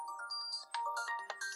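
A default phone ringtone plays a bright, melodic electronic tune with quick chiming notes, loud, heard alone without any talking.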